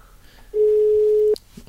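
A single steady ringback tone of an outgoing phone call, a loud, clear electronic hum lasting under a second before cutting off, with faint background noise around it.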